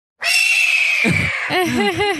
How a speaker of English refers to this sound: Here's a not so calm bird sound.